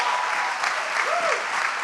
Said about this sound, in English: You can clap. That's pretty good.